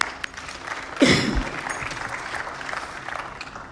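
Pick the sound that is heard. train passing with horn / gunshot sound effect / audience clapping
audience clapping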